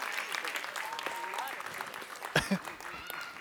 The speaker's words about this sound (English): All right, so how about a big round of applause for all of our kids?